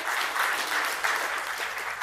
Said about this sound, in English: Give yourself a clap.